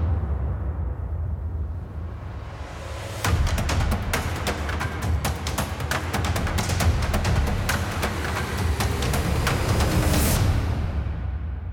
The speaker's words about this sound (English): All right, you know what those drum beats are. It is now time for our favorites.